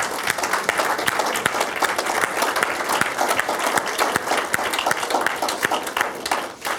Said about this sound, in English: And if God was right here, And we clap for Him. That's why I get a little upset when we do weak claps for the Lord. Because if we're going to clap for the Lord, He's here. Let's honor Him. Let's honor God.